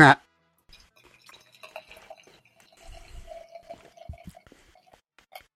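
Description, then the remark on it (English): Sour ale from Pipe Dream Brewing, infused with rainbow candy, glugs and splashes as it's poured into a glass, a steady trickle with small bubbly drips, starting after a brief sharp knock at the very beginning. “Oh, hot damn. I'm still pouring it.”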